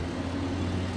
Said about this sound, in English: Damn, this big ass fire truck. The hell this fire truck doing?